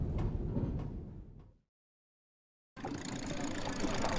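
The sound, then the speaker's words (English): Steady, rumbling street traffic with a car passing, breaking off abruptly into about a second of silence before the busy roadway noise resumes, loud. “watch out for the buckboards in that car”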